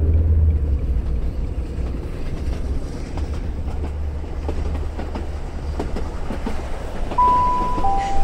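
A train rumbles along loudly and steadily, with deep low-end roar and rattling clatter from the carriages, and a brief high tone sounding near the end.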